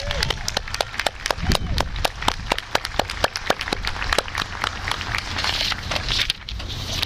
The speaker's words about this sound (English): One more round of applause for Mark, please.